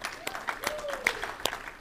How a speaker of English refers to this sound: Isn't it awesome? You can clap.